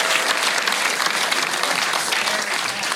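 A steady wash of audience applause, many hands clapping at once in a dense, even roar that holds at a fairly loud level for the whole stretch, with no talking over it.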